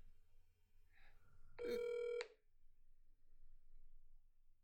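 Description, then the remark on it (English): A single short burst of the ringing tone of an outgoing phone call, steady and buzzy, sounds once over a faint low background hum, with no one talking. “Might have to call Indiana.”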